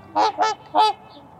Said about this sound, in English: With a voice like that, there's no wondering where trumpeter swans get their name. Weighing over 25 pounds and measuring about 5 feet from beak to tail, these swans are the heaviest flying birds in North America.